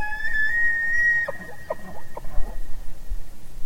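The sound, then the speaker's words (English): A male tule elk bugles in the fall breeding season to challenge other males, a high, drawn-out whistling squeal that wavers and slides, followed by a series of short, grunting chuckles over faint background noise. “Breeding season is in the fall, and males will bugle to challenge each other.”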